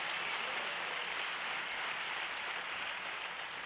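A church audience at Go Church claps steadily during a sermon, a dense, even wash of many hands with no single claps standing out and no voices over it, holding at a constant level for the whole few seconds.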